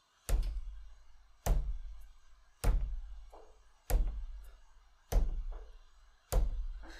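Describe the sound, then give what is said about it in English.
A man bangs his head into the wall inside a locked freezer, six heavy, booming thuds at a slow, steady pace, each one loud with a short resonant decay, and no voices. “And you turn around, and there's your friend on the other side of the room with a manic smile on his face, banging his head into the wall over and over again.”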